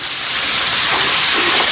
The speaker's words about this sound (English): And weaver ants aren't the only insects that find their way onto Cambodian plates. Right now we're listening to the sounds of crickets being stir-fried in oil.